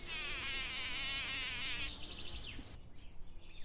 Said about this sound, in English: See, you can joke too, say the bees kindly and buzz away.